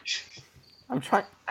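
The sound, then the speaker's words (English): A high-pitched cricket chirp sounds indoors at the start, followed by a faint lingering trill, before a voice cuts in with muffled, indistinct speech. “Because this cricket is causing you to lose complete and utter track of your thoughts.”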